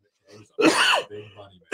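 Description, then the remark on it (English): A man gives a loud, harsh cough, with rough throat-clearing sounds around it and the start of another burst at the very end. “I'm telling you, man, I got this cough.”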